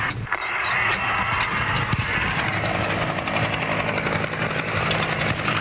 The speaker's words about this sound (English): And immediately on arrival, the fire appliances pull up alongside us overhead. You can hear the helicopter.